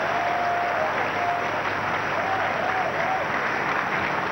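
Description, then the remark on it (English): Steady, dense applause from a large church audience clapping for the Lord, many hands clapping at once in a continuous loud wash, with faint high tones and a few voices barely audible beneath it. “Shall we put our hands together and clap for the Lord?”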